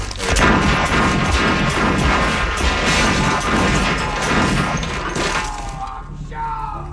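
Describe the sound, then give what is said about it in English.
Pistol shots in a Western movie crack out rapidly and repeatedly over a loud, busy movie soundtrack, a dense volley of sharp bangs that stops near the end, leaving a quieter tonal tail. “Well, maybe it's the gunfire from somebody else's pistol.”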